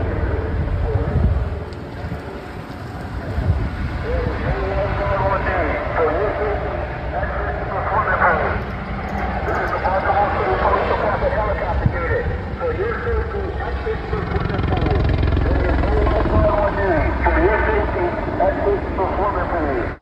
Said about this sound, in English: if you couldn't quite make that out over the noise of the helicopter, that was the helicopter. Quote, "This is the Baltimore City Police Department helicopter unit. Please exit the swimming pool. There is no lifeguard on duty.